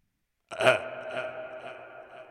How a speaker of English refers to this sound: That, oh my God, I'm going to burp again. Excuse me.